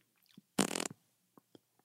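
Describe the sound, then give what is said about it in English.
A single wet, buzzing raspberry (a Bronx cheer) blown with the lips at someone's pronunciation, lasting about a third of a second and fairly loud, with a few faint clicks and mouth noises before and after. “Did you just toot on my pronunciation? Yeah, even though it was correct. Did you give me a Bronx cheer?”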